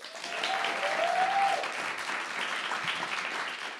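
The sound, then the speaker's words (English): A crowd claps steadily for several seconds as a vote for theme music, a dense, even wash of many hands at moderate loudness, with a brief whistle-like tone near the start and no one talking. “Do you want the theme music? No, let's take a doodle poll. theme music, clap.”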